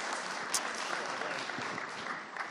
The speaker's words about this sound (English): Well, round of applause for you guys.